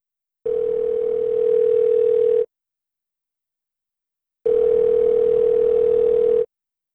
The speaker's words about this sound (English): So let's see if I can get my phone up in here, and let's give this guy a call and let him know that he won his gift card.